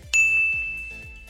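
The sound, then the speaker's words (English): A single bright bell ding, used as a timing signal in a workout, strikes sharply and rings on with a clear, sustained tone that slowly fades, heard alone with no voices. “There is a handy little bell sound, too.”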